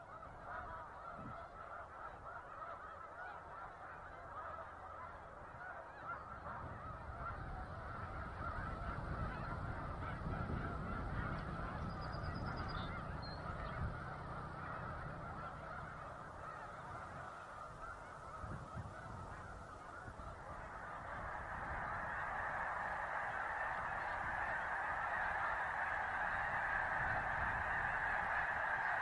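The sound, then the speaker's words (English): A vast flock of migrating snow geese honks nonstop near Savannah, New York, in the Finger Lakes, hundreds of calls blending into a dense, clamorous wall of sound that swells louder in the final stretch, with no voices present. “We leave you this morning near Savannah, New York, in the Finger Lakes, a favorite spot for migrating snow geese.”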